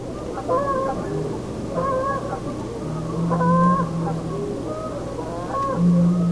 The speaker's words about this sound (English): The geese call out.